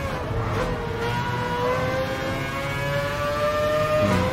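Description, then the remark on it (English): A steady, droning engine whine holds a high pitch that slowly falls and rises as race cars are driven at speed in gameplay footage from a racing video game trailer, with continuous loud revving and no speech. “They showed the main menu, they showed how you get to your cars, and now they're showing you driving the cars in the game”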